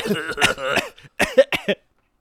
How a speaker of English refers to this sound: Dude, were you just coughing through that whole movie?